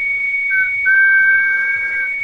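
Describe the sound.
A person whistles a long, steady held note, fairly loud, with a second lower pitch sliding in partway through and holding to the end. No talking.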